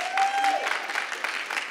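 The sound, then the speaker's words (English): A crowd applauds in a steady, dense patter of many hands clapping at once, fairly loud and continuous, with a brief tonal whine at the start. “Okay, if you didn't just clap then, give God a clap right now.”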